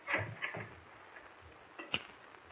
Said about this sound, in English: I'll light the oil lamp, Mr. Kent.